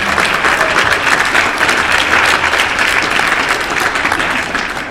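A crowd at a live event claps loudly and steadily for about five seconds, applauding event partner Pillar Performance; a dense wash of many hands with no pauses, no talking over it and no one voice standing out.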